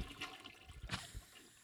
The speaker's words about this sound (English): Somebody flushing? Hey. Who's flushing? What is that?